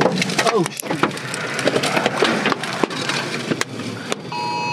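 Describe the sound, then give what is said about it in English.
Big hailstones batter a vehicle in a loud, dense barrage of sharp cracks and knocks, with irregular louder impacts punching through a constant roar of rattling ice. “Okay, big hail.”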